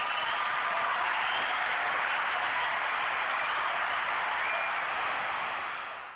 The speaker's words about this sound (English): Got the church claps going on.